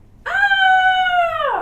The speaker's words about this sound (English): Donna takes Leo, but Spot barks and jumps in the way and also grabs Peachy.